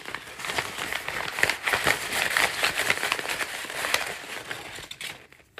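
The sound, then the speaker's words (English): Continuous crinkling and crumpling of small paper scraps inside an envelope, a dense stream of dry crackles and rustles with a few sharper pops, fading out at the end. “If you like the sound of little bits of paper being like smushed up in an envelope, this is the show for you.”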